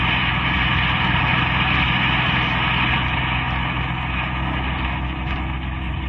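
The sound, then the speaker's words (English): A car engine hums steadily and loudly throughout, a constant low rumble with a broad road-noise wash, like riding inside a moving vehicle, driving past Octavia toward Laguna and along Broadway. No voices are heard. “I dislike being repetitious, girl, but the car is still following us.”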